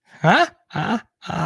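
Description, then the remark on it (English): The speaker's excited dog lets out three quick, loud whining yelps with rising, gliding pitch, spaced by short pauses and with no talking. “My dog goes crazy.”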